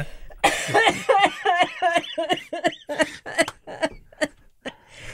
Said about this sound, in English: Sorry about the cough